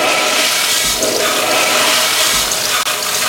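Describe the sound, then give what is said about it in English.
A toilet flushes loudly, a continuous rushing gurgle of water lasting a few seconds with no one speaking. “Sorry, I can't stop flushing it.”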